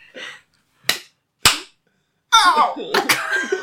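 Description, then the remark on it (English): A short soft sound, then two sharp slapping pats on a baby's back, followed by a long, loud, raspy burp from the baby with a rough, gurgling texture. “That was the worst burp I've ever heard.”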